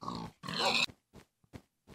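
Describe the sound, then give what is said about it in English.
A pig lets out two loud, harsh squealing snorts in quick succession, then three short, quieter grunts spaced out with brief silences between them. “That pig was dry.”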